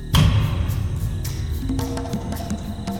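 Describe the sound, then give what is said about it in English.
A single loud, heavy knock echoes through a forest at the start and rings out as it fades, leaving a low, sustained tonal hum with a few faint, scattered taps afterward. “A loud knock sounded through the forest, like a woodpecker amplified 100-fold.”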